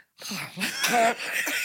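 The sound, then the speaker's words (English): A person voices a raspy, hissing screech in imitation of a raptor. It is fairly loud and lasts about a second and a half, with a brief shrill squeal in the middle. “We'll make a raptor noise.”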